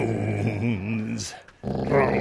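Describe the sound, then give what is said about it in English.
A dog named Mahler lets out a drawn-out, wavering growl that rises and falls in pitch for about a second, as if trying to say 'drones', then a short hiss, a pause, and a louder stretch of voice and noise. “He's starting to say drones, I think.”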